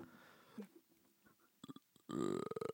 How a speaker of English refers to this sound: That's pretty good. A burp.